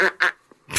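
A duck quacks three times in quick succession, loud, each call a short nasal burst with a brief pause before the last one. No voices are heard.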